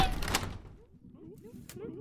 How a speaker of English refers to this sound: Close that door!